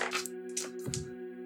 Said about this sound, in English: I'm way off, 69. I'm switching dice. I just rolled a 90. Oh, the naughty dice. Dice jail.